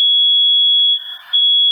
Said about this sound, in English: Oh, boy. That sounds like a fire alarm. It does sound like a fire alarm. That's the first fire alarm we've ever had on the podcast.